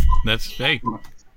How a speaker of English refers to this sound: He's got a cuckoo clock.